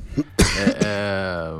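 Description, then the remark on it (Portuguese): A few harsh coughs burst out in quick succession, followed by a drawn-out voiced rasp like someone clearing their throat, fairly loud. “Deixa eu sair para tossir que eu tô.”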